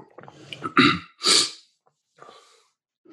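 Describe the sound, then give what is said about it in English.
Someone clears a ball of snot from the back of their throat: a rough, gurgly rasp followed by two harsh, forceful bursts, then a pause and a few quieter breathy rasps. “I had like a snot ball back in my throat.”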